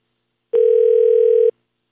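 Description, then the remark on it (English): A single telephone ring tone sounds as a phone call between two people goes through: one steady, slightly buzzing electronic tone lasting about a second, clear, with silence around it and no voices. “So these two people with very different beliefs got on the phone together.”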